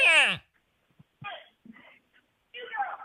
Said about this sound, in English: Ooh, he's screaming. He's losing it. You hear him in the background there?